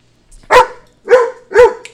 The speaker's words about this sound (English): Fucking dog.